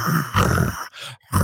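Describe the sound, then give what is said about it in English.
A person imitates Ruby growling at a woman: low, rough, rumbling bursts in about three pulses with brief gaps, fairly loud and with no speech. “And she moves forward and Ruby is like growling at her like.”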